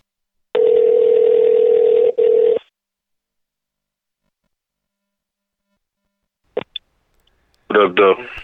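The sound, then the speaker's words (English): A steady telephone dial tone hums for about two seconds with a tiny break, then after a pause come a couple of quick dialing clicks before a voice begins speaking over the line. “I'm gonna get him on the phone right now.”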